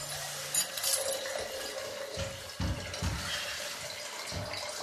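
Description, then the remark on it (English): Water pours and gurgles steadily into a rubber hot water bottle, with a few deeper glugging bursts as it fills; no one speaks. “Is that my hot water bottle you're doing there”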